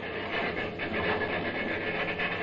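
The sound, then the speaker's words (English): Train wheels of a moving train clatter steadily over the rails in a continuous, dense rumble with faint repeating clicks, moderately loud and unbroken, with no voices. “Say, don't them wheels sound funny?”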